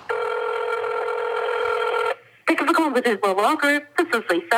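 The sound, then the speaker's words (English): A steady, buzzy ringback tone drones for about two seconds on an outgoing phone call to reach a lawyer who represents Jet's Towing, then cuts off and a thin, phone-filtered voice answers and starts talking. “I reached someone by phone,”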